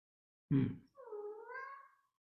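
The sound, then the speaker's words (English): A cat named Snowball lets out one long, drawn-out, angry-sounding meow that rises slightly in pitch, right after a short, rough burst of noise. No one speaks. “Can you hear Snowball? he's mad that the door's not open to go see Peter.”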